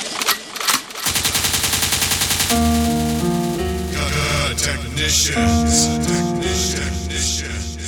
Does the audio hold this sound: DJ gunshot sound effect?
yes